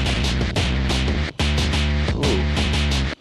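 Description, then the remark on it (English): A loud, gritty synth tone pushed through a four-band distortion module plays a rapid, rhythmic sequence of buzzing notes, dense with harmonics, dropping out for brief gaps before resuming. No voices. “My name is Tim, and I'm here to say that the four-band distortion is a really good thing.”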